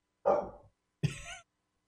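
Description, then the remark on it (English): A dog barks twice indoors, two short sharp woofs about a second apart, moderately loud, with silence between and after them. “Right when I start recording, why are we barking?”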